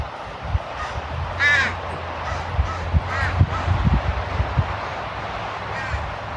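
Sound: bird calling outdoors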